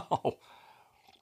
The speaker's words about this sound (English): My throat is quite dry. I'm still sick. Excuse me. Thank you. That helps. My honey water from my honey is still warm. Let me get one more sip of that, actually.